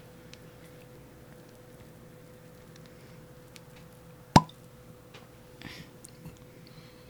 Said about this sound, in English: Let's open this bottle. Probably a cork. I don't want to be too rough with it.